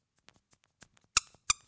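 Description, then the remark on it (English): A rubber duck toy squeaks twice, sharp, after a few faint, scattered squeaks and clicks. No one speaks. “You give me a rubber ducky right now?”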